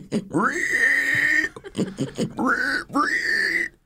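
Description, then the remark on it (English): A person imitates a pig, hog or swine with loud, drawn-out nasal squeals and grunts, three sustained calls in a row with brief breaths between, clear. “Pig, I mean hog or swine.”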